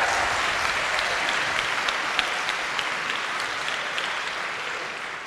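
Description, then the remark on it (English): A crowd applauds steadily, with many hands clapping in a dense, even roar of claps that holds at a loud level for the whole stretch without pausing, applauding the mention of the creation of the Consumer Financial Protection Bureau under Dodd-Frank. “So when Dodd-Frank was passed, Congress said, we're going to create, okay, everybody get ready to applaud, we're going to create this new consumer agency, the Consumer Financial Protection Bureau.”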